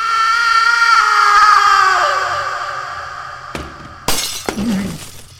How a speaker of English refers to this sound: He turns around and looks at Issa, and then the doctor crashes into the ground behind him.